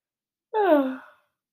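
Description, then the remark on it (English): A single short, voiced yawn with pitch sliding downward before fading out. It is heard on its own, with silence before and after and no talking. “Solid sexy yawn for everyone who has a yawn fetish.”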